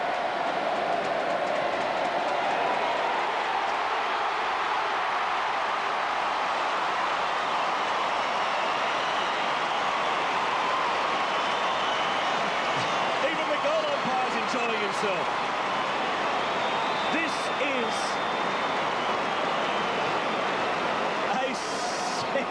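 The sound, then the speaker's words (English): A huge football stadium crowd roars and cheers as Stephen Milne kicks his tenth straight goal of the game, a steady, loud wash of noise that swells and holds for the whole stretch, with scattered shouts and whistles rising out of it. “Listen to the crowd.”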